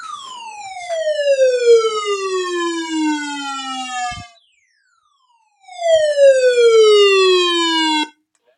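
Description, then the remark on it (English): A weather radio's emergency alert sounds twice: loud, buzzy electronic tones that each glide steadily downward in pitch for about four seconds, with a short silence between them and no talking. “I have a weather radio. That's the first time it's ever gone off.”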